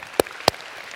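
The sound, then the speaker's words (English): Two crisp hand claps, about a third of a second apart, in a church, like the first scattered beats of audience applause, with no voices. “And you want to let's clap for these guys.”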